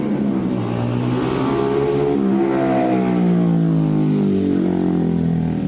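MotoGP racing motorcycle engines roar loudly and steadily, their high-pitched whine climbing and dropping as several bikes rev and shift through gears together, with no voices present, played as an inserted advertisement for the MotoGP race.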